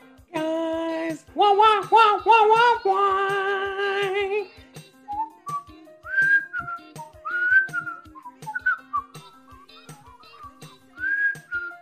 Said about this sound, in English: Why would you start whistling when I'm doing it? Could you not hear me doing it? Yeah, I thought I would give you some harmony.